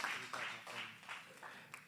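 A crowd applauds steadily for a couple of seconds for a pastor called up to share, a dense wash of clapping with a few sharper claps standing out.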